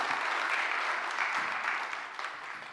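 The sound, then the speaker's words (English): A round of applause from a crowd for a woman who has just played a chord on an instrument, steady dense clapping that holds level for a couple of seconds and then begins to thin and fade toward the end. “Give her a little round of applause.”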